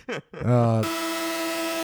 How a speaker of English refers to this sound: Start them off with farts. If you begin with farts, it only gets better from there.